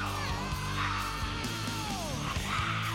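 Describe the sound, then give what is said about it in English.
A male rock vocalist screams a sustained, strained chorus line over dense, loud distorted band backing with heavy low-end, the raw shouted voice staying forceful for the full few seconds. “Like right after that building pre-chorus, to him just like screaming his heart out right here in the chorus.”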